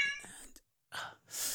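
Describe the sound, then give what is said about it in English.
A fussy cat gives a single short, high meow as its food is scraped in, followed by a brief pause and two breathy, hissing bursts of noise. “Oh, my God, you fussy cat. Okay, here you go.”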